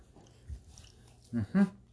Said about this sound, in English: Sorry, we're dealing with an overload of dogs real quick.